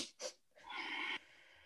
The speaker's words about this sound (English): So three quick inhales, one long exhale. And that, it's really funny. So for my older students, I call that peace breath. For my little mm-hmm. ones, I call it bunny breath.